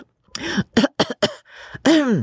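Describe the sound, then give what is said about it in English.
A woman clears her throat in a quick series of rough, voiced rasps, finishing with a longer, drawn-out hum-like clearing; no other sounds around it. “She cleared her throat.”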